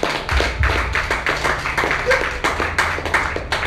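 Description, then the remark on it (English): An audience claps their hands for God in a quick, steady rhythm, dense sharp slaps overlapping into a continuous patter with a low rumble beneath, sustained at a fairly loud level throughout. “I thought you would clap your hands for God.”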